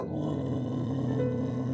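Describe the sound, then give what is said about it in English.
A dog with a pickleball racket in its mouth growls in one low, steady, rumbling stretch that holds at the same loudness throughout, with no distinct barks and no voices. “Imagine for a moment that you want to play pickleball, but you look across the room and see your dog has your racket in its mouth.”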